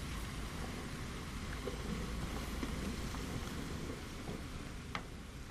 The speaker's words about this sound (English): The noise in the background is the ship pushing its way through loose pack ice in Antarctic Sound